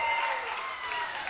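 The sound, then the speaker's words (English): A crowd claps and cheers for a DJ in a steady, dense wash of applause, loud and continuous throughout with scattered shouts mixed in, and no single voice standing out. “Once again, please make some noise for …!”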